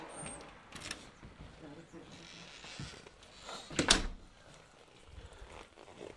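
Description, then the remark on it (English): A door in a home being viewed for sale opens and shuts with a single sharp knock near the middle, set against faint room noise and muffled voices in the background. “This is a nice door.”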